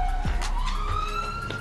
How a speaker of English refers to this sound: If you guys didn't hear, there was a siren that went by, but yeah.